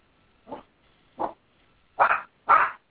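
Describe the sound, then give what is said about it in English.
Four sharp dog barks, the first two shorter and spaced apart, the last two louder and closer together, with no talking around them. “Nope, we have a barking dog”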